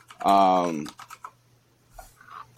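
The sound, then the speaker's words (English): A brief, loud, tonal voice-like sound, then a scattering of soft, quick computer keyboard clicks in an irregular rhythm, fairly quiet, over a low steady hum, as someone types to look up whether a company is public. “Hold on, typing threw me off.”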